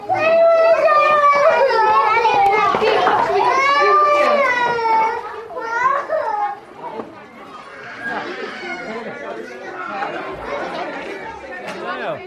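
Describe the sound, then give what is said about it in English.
A noisy classroom full of children chattering and calling out at once, picked up through a microphone on a pupil's jumper, their high-pitched voices overlapping loudly for several seconds before settling into a lower, busy murmur. “But then you hear in the background that some of his classmates aren't so chilled.”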